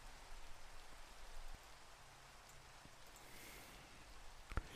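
Steady rain falls continuously, a dense hiss of drops spread across the whole range, with occasional sharper patters standing out near the end. No voices, just the even wash of rainfall.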